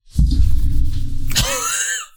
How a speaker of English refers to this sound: Your chair made such a loud noise. Actually, I loved it. Looked up and you were so far roll, back. The pause. Just the picture of you just like scooting directly backwards in your chair.